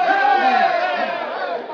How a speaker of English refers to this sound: When Miyakut was marched into the village wearing handcuffs, the Indians broke into a cheer.